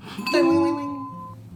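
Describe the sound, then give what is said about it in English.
A little bell on a shop door rings once as the door is opened, a bright, clear metallic strike, its high tone shimmering and slowly fading over about a second above a soft low rumble. “As you open the door and you enter, you hear a little bell.”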